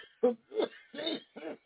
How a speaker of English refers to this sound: I'm sorry, I got a coughing fit right now.